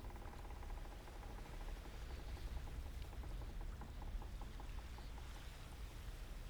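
Water sloshes and laps steadily against a boat hull on the ocean, a continuous splashing and gurgling with faint ticking drips, no voices present.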